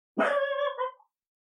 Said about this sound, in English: Hey! You have absolutely nothing to bark at. You're inventing problems! Borf. Borf.